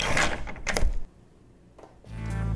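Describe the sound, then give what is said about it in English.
A door to the street swings shut with a rattling, clattering thud, followed by a short quiet pause, a brief click as it is locked, and then a steady low hum. “Bye, I said, ushering him out into the street and locking the door behind him.”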